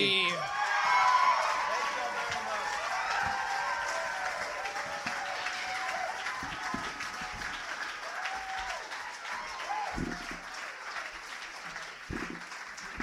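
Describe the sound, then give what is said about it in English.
A crowd applauds loudly and steadily, a dense wash of clapping with scattered whoops and cheers, holding strong for several seconds before gradually thinning out. “Give them a huge fucking round of applause, guys.”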